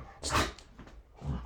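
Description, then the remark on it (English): Dogs bark in two short bursts, one right after the start and another about a second later, with nobody talking over them. “You dogs are crazy.”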